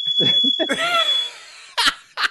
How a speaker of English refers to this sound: Sounds like your fire alarm. Yeah. What is that?